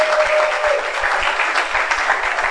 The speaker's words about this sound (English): Thank you very much. Give them a round of applause as a favor.